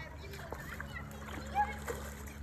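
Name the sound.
splashing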